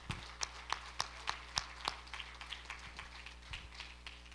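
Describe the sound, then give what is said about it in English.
An audience claps hands together in a steady rhythm, sharp regular claps ringing out, strong at first and growing softer and looser toward the end, clapping for God during a sermon. “Clap your hands and love him today.”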